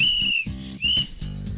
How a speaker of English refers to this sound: Blow the whistle, people. We're ready to crack some pads.